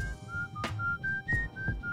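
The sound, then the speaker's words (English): A person whistles in imitation of a budgie's chirping: a string of short, steady, fairly high notes that step up and down in pitch, broken by breathy bursts, with no talking. “now if anyone at home knows this, but if you have a budgie, you keep it in the main room of the house.”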